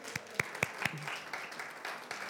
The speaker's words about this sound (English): Give Bill a round of applause, too. He's working that sound.